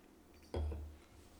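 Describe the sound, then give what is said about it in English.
A single sharp knock of a glass being handled or set down during a sip, with a brief low thud and a short fading ring, alone in an otherwise quiet moment. “Okay, I'm going to need to take a sip here.”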